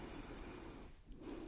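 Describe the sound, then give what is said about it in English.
A steady nasal breath drawn in through one nostril while the other is blocked, during a nose examination of a patient with a stuffy nose; a continuous airy rush with a brief dip before the airflow resumes strongly. “Let me block one of your nostrils and breathe.”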